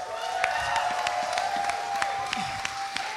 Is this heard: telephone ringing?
no